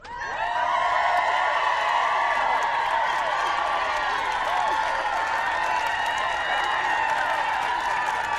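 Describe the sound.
A crowd applauds and cheers steadily, a dense wash of clapping mixed with shouting voices that holds at a constant, fairly loud level throughout.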